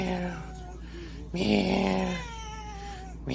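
A cat meows in drawn-out, wavering cries, a softer call first and then a louder, longer one in the middle, with a faint hiss of background noise.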